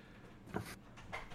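A door is shut with a soft, muffled thud and a brief rushing scrape, followed a moment later by a second faint sliding sound; quiet overall with no talking.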